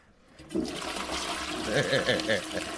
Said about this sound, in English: I want to flush it again.